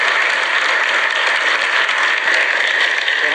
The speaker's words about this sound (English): A round of applause for Suzanne Craig.